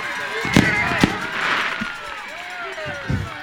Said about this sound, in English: Fireworks are shooting off.